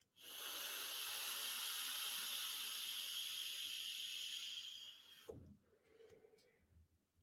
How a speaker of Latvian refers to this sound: Es vai tādu restricted direct long hit uztaisīt, jā, tādu varu pa taisno plaušās vilktā no grūtībām, bet varu, jā, un es atgriežu vaļā tagad gaisu līdz galiem, vaļā.